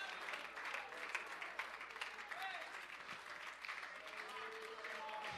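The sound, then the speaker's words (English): A crowd at a religious gathering claps its hands steadily and continuously after being urged to clap, a dense wash of many hands at once, with faint voices calling out underneath throughout. “Come on, somebody, clap your hands and say, I need a sound.”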